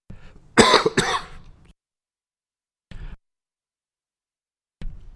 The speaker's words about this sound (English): Sometimes the cough button works and sometimes it doesn't, and that time it did not. Sorry about that.